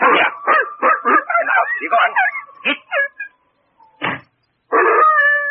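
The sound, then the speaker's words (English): An old hound whines and yelps in a rapid string of short, high, wavering cries, pauses, gives another brief cry, then breaks into a sustained, steady howl. “Enough of that. Now lie down. Chicken-hearted old hound.”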